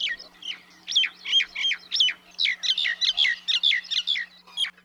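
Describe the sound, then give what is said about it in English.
A common myna sings a rapid series of loud, chattering whistles and squawky notes, repeated in a steady rhythm for several seconds, with no one talking. “It is the myna. Myna birds are everywhere, literally.”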